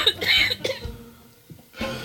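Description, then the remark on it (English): Loud coughing into a microphone: a harsh burst of several coughs, a short pause, then another cough near the end, with no talking. “Please don't cough into the microphone.”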